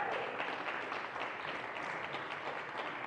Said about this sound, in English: How about another big round of applause for our band, …? Let's hear it for them.